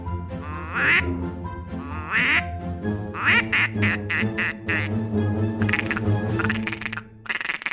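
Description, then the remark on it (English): A duck-hunting duck call blown in quick bursts, mimicking a male mallard call and a female mallard call of different tones, then a rapid chattering call of ducks feeding, loud with no talking. “That was 3 calls. It was the male mallard call, it was the female mallard call, and it was ducks feeding.”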